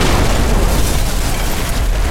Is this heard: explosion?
yes